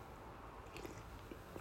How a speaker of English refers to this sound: And that sip of coffee just helped me.